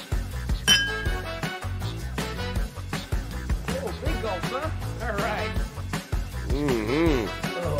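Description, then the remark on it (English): A single bright, clear clink of glasses in a toast with Weller whiskey rings out near the start, then fades as people keep talking over a steady background. “I'll take a gulp of the Weller. Cheers”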